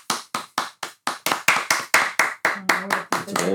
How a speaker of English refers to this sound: We'll clap for you.